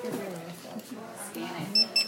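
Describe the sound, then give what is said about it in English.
Two short, high-pitched electronic beeps in quick succession from a barcode scanner at a cash register as an item is scanned by volunteers at a book sale, cutting through people talking. “Scan it. Boom.”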